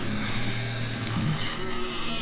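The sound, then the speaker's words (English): Llama calls in a film ring out, a loud, sustained, wavering bleat that sounds partly like a sheep and partly like a whinnying horse, continuing steadily through the short clip with a dense background behind it. “They sound like a mix of horses and sheep.”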